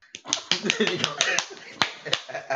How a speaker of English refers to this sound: is there anyone in GCW that you're looking forward to slapping up like Cameron with the K just did